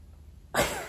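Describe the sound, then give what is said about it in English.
A single breathy sniff through the nose as someone sniffs flowers, bursting in after a moment of near silence and trailing off briefly. No one speaks. “One last sniff of the flowers.”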